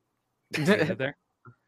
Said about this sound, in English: So let's play a video with some goats.